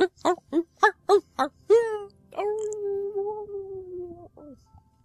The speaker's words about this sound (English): There's somebody, there's a dog singing. What is going on?